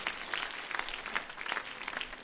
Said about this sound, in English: Clap your hands while you're being seated and just give the Lord a round of applause.